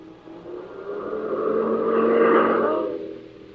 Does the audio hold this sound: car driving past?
yes